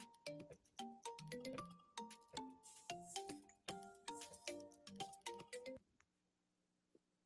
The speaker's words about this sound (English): Love your ringtone.